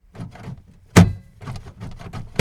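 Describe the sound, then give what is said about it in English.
A single heavy thud as an airplane door shuts, loud, with a brief ringing tail. Voices murmur before and after it. “The airplane door shut and excitement sparkled through our hands.”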